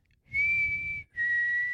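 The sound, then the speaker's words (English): A person whistles a short tune meant as the whistle from the beginning of Lassie: two long, steady notes, the second slightly lower, separated by a brief breath. The whistling is clear, with no talking. “Or no, I want my whistle to be from the beginning of Lassie.”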